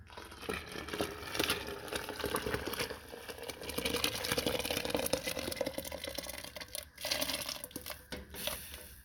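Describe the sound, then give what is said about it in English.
Green salsa is carefully poured onto pozole broth in a hot pan, setting off a loud, steady sizzle and crackle that stays dense throughout, with bursts of sputtering and no voices over it. “Because what I'm going to do now is I'm going to put the salsa.”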